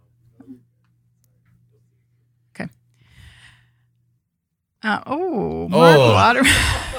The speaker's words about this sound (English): There was an audible gasp in the studio, and we didn't understand, but it was I thought the live producer. Stream went down, but no. Yeah, we thought the stream went down again, but it was really just the producers